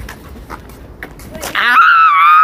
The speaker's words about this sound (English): Why are you screaming? Because you pushed me.